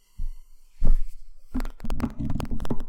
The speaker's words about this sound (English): You hear that? I farted. I don't know if I picked it up.